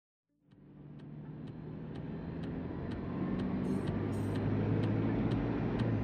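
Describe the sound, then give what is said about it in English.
A steady rumble of a Bentley's engine while speeding north, with constant low road noise and faint periodic clicking, building slightly in loudness and continuing without any talk. “Okay, so we're in the car,”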